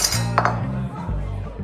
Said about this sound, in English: Barney dropped his cutlery and grabbed his throat.